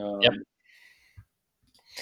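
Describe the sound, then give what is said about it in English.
A couple of soft, isolated computer mouse clicks sound, spaced apart, after a brief bit of voice at the start, with quiet stretches between them. “So you can hear me clicking around.”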